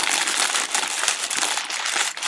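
Steady crinkling and rustling of paper bags being crushed, a dense crackly texture with small sharp pops throughout, heard alone without any voices.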